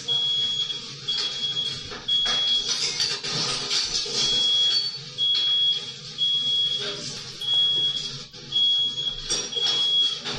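A smoke alarm beeps in a steady repeating pattern of shrill, high-pitched tones, sounding clearly over a loud, busy background of rushing, rumbling noise, set off by a fire with heavy smoke and flames.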